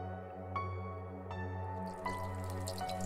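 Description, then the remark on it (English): Water runs from a shower, with a few evenly spaced drips over a steady low hum, then a brighter hissing spray joins in. Moderately quiet, no voices. “Take a shower, shave, and go down for breakfast.”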